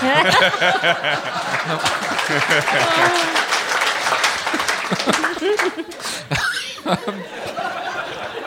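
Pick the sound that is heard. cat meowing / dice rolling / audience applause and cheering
audience applause and cheering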